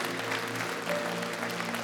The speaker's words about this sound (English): Come on, you can cheer while people are still walking. Keep cheering for them.